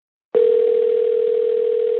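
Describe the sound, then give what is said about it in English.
A telephone line tone of an outgoing call to a church begins abruptly after a brief silence and holds as one steady, unbroken hum at a constant, fairly loud level, with no voices. “I called Pastor Hamilton's church, King James Bible Baptist.”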